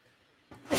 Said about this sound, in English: While I sneeze, excuse me, I couldn't mute my mic in time.